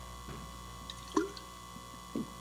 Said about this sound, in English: He pours a lot of water down himself, and then he continues. Paraphrase. Really need to get something with a straw.